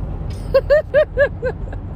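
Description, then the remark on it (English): A steady low rumble of a car cabin fills the background, broken midway by a run of five short, evenly spaced tonal blips that rise and fall. “And I'm back in my car.”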